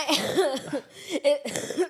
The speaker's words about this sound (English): Why did your laugh turn into a cough?